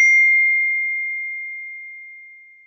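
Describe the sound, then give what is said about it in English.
A single bright electronic ding from a phone notification, struck once and left to ring out with a slow, clean fade over a couple of seconds, nothing else around it. “Did you just hear that? Yeah, I just got something. Where did that come from? Oh, okay. I didn't know if it came from my. Oh, it's from your phone.”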